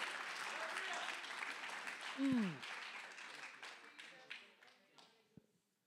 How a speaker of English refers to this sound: Can you give him praise and love all over the room this morning? Come on, clap your hands. Come on, lift up your voice.